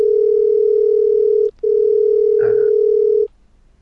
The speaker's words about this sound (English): Oh, that's a dial tone.